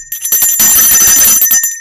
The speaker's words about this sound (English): Like, it's my bell.